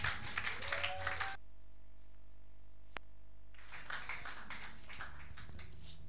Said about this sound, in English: Oh, if the clapping was for me, then it's good you stopped.